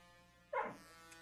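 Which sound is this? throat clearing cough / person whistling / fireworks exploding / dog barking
dog barking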